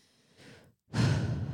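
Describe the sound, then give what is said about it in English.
A deep breath: a soft, airy inhale, a brief pause, then a loud, rushing exhale like a heavy sigh that holds steady to the end, with no talking. “But more importantly, I think at the end of the day, the best thing that you can do is to take a deep breath.”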